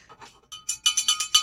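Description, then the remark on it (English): A cowbell is rung in a quick, fairly even series of about six bright, clanking metallic strikes, with a few softer taps before them and no talking. “Cowbell, everybody.”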